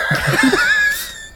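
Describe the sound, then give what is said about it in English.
A person imitates a horse whinny: one loud, high-pitched neigh that wavers and trembles for about a second before trailing off. No other voices or sounds accompany it. “the horse stable that David was investigating is suddenly filled with horse”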